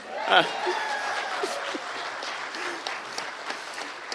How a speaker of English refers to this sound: I mean, everybody clap for you, but let's just go ahead and say it.